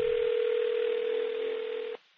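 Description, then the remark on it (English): A steady, continuous telephone dial tone hums for about two seconds as a call is placed, before cutting off abruptly, with no voices present. “Well, this guy left me his phone number, so let's give him a call and talk to him live on the podcast.”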